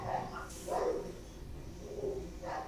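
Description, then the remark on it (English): Several dogs bark in short, irregular bursts, somewhat muffled, with a few overlapping yips over a steady background hum and no talking. “Dogs are barking like a fuckload.”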